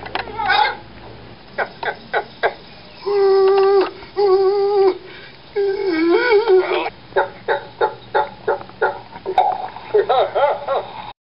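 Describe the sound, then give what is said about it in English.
A man does a frantic impression of a chicken with its head cut off, loud: bursts of rapid staccato clucks broken up by long, wavering squawks, then more quick, evenly spaced clucks. “Here's an impersonation. The chicken with its head cut off.”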